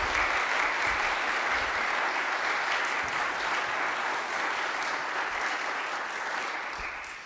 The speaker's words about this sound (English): Can I get one more round of applause for all of our storytellers tonight?